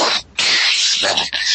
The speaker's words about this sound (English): I'm having trouble getting this pickle jar open.